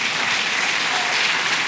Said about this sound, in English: That's where you clap again.